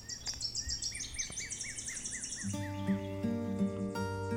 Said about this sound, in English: Or you can come here where it's forested and you're up on a bluff and there are birds.